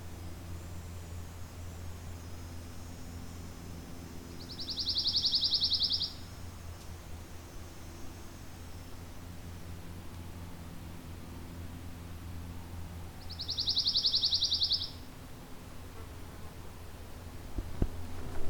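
A pine warbler singing from right overhead gives two quick, even trills several seconds apart, each lasting about a second and a half, clear and moderately loud over a steady outdoor hiss with no one speaking.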